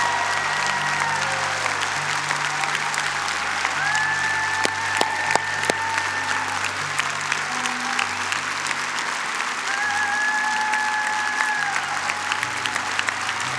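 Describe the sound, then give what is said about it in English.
A large church audience breaks into sustained, loud applause and cheering to cheer on people about to be baptized, a dense wash of clapping hands with scattered whoops, holding steady for the full stretch over a low, sustained musical drone. “And as one big church family, can you cheer them on?”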